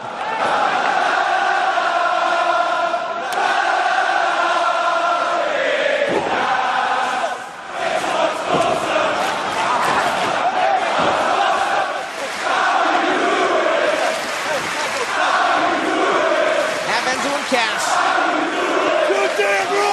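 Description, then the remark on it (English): A large English wrestling crowd chants "Big Cass" in unison during a tag team match, voices rising and falling in a steady sung rhythm, loud and sustained for the whole stretch with cheers and shouts mixed in. “The chants in this match are amazing.”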